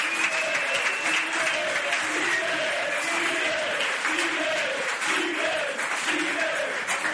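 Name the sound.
round of applause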